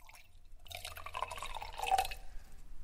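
White Arinto wine pours into a glass in the Ermo tasting room in a steady, gurgling stream lasting a couple of seconds, fairly quiet, with a faint rising pitch as the glass fills. No talking.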